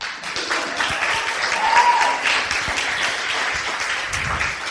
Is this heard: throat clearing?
no